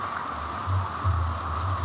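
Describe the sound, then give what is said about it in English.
Steady rain falling in a continuous, even hiss, the rain that comes every day at about 3 o'clock, with a low droning hum swelling and fading underneath. No one speaks. “so that when the rain stops, we can figure out how to get this going”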